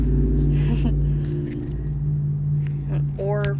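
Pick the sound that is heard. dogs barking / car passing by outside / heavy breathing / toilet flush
car passing by outside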